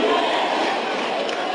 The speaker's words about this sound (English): The crowd getting behind the breakers here right now.